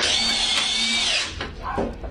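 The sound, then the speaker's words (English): A power drill whines loudly and steadily as it drives into a 2x4 across a basement door for just over a second, then winds down, followed by a few brief shuffling, clunking noises. “So what he's doing is he's drilling a 2x4 across the basement door right now.”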